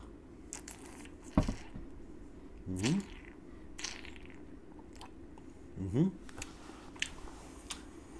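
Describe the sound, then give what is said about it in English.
Two brief sips or gulps of pure green tea, a few seconds apart, with small clicks and rustles in between against a quiet background hum. “So let's have a sip of this.”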